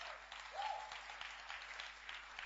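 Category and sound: crowd, audience clapping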